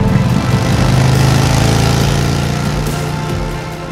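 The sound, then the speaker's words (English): A loud motorcycle engine roars as two riders jump on the bike parked in front of a house and rev it up, its throaty rumble rising and holding steady before easing off slightly, with no voices present. “Cody and JJ jumped hurriedly on the bike and revved up to it.”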